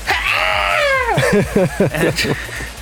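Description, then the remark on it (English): A person yells like a hawk after throwing the ball to the ground during a team ball game, a loud, shrill hawk-like scream that glides downward for about a second, then breaks into short, choppy vocal bursts. “I throw the ball to the ground and I yell like a hawk.”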